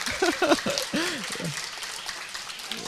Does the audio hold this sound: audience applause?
yes